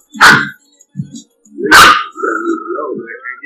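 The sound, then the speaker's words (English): A small dog lets out two sharp, high-pitched barks about a second and a half apart, loud, the second trailing into a whiny tone while a low voice murmurs underneath. “Why all the little dogs do that shit to you”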